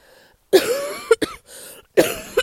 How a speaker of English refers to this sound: Excuse me. I'm recovering from a very, very bad cold, and that's why I'm coughing.